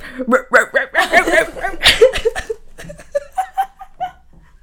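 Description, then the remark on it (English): A woman with a worn-down voice does a raspy imitation of a dog's bark, a series of short voiced yelps mixed with chuckling, settling into a quicker, softer run of yips toward the end. “Can you show us your bark, please? Demonstrate.”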